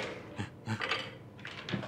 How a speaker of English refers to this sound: I'm going to play with some dice.